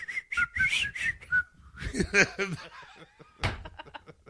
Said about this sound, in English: Did someone call me? Quick, we need help. You rang? You whistled?